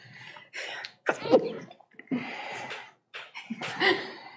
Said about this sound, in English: Bless you.